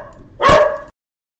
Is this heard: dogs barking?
yes